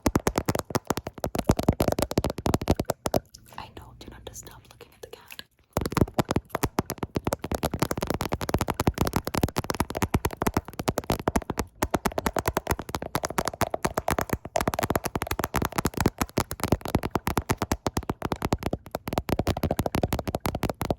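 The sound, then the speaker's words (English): Rapid, steady tapping with many quick, crisp strikes running almost continuously, briefly thinning out for a couple of seconds, while a person speaks over it. “And I'm just gonna have to tap.”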